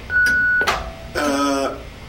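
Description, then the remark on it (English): A single steady, mid-pitched answering machine beep on the Mojo Radio Show's phone line holds for about half a second, then a short burst of noise and a brief voiced sound follow. “But please, wait for the tone and the boys will be with you shortly.”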